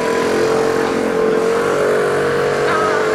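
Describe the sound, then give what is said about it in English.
A small motor scooter's engine buzzes loudly as it drives off, a steady droning whine with a slight rise in pitch as it pulls away, with no one talking. “At least around here, like that scooter that just drove off, perfect example.”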